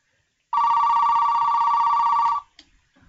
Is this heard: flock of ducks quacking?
no